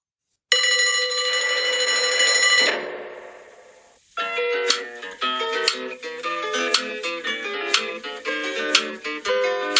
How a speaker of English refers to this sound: And once the call had been answered, Captain Flack pressed the button, the bell rang, and we had the fireman slide down the pole of the fire station, and then the bit which I'm sure you're all itching to join in with.